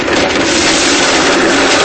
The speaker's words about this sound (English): Okay, on the count of three, switch on both blenders and we'll see which operating system blends best.